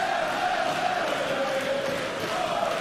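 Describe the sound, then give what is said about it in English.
A large arena crowd at a wrestling world title match chants in unison, calling for a kick, a sustained roar of many voices holding a steady pitch, loud and continuous throughout with no one speaking over it. “Crowd are calling for the overlay kick.”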